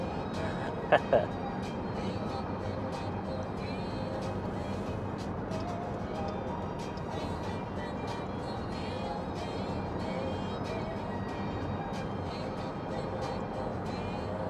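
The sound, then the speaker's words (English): Steady, dense road roar from a car cruising at highway speed on a highway, trying to get past three or four cars with a big semi truck around, continuous and fairly loud throughout, with a brief sharper knock near the start and no distinct passing vehicle standing out. “I'm just trying to get past this. Past the 3-4 cars that are really not that...”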